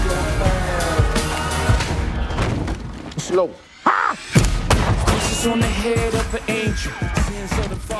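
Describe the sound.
A dense, cinematic trailer mix of loud booming hits and crashing impacts layered under spoken dialogue, with a brief dip into near-silence midway before the barrage resumes.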